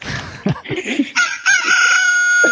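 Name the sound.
rooster crowing sound effect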